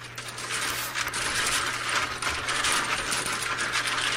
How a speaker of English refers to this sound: Dominoes.